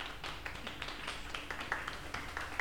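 Audience applause: a steady wash of many overlapping hand claps, dense and continuous with sharper individual claps poking through, at a moderate level with no voices over it.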